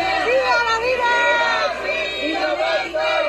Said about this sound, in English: Shouting yes to life, no to abortion, dozens from a pro-life youth group protested in front of Mexico's Supreme Court, which last week decriminalized abortion.